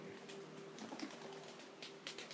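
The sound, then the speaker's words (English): Startled pigeons burst into flight, their wings clattering in quick, rustling flurries, with a faint cooing in the background; there is no talking. “Starting some more pigeons.”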